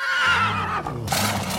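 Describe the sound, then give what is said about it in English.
A horse neighs loudly, one continuous whinny with a shrill, wavering high pitch over a low rumbling tone, ending in a breathy burst. “Stick around for a whole lot more, and we'll be right back after this horse takes a wrong turn.”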